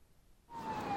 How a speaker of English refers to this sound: A siren wailed and passed the shack, deafening at first, then gradually fading.